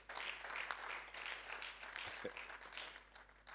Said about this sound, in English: Clap again. You've learned something today.